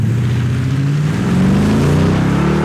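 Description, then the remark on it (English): A Toyota Tundra pickup's 5.7-liter V8 engine revs up through a Borla Touring aftermarket exhaust, its deep, rumbling tone climbing steadily and loudly over nearly three seconds, with no one speaking. “Is that the Tundra with the 5.7? Yep, that's a 5.7.”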